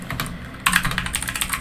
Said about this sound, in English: Again, I hit enter before I finish typing the message.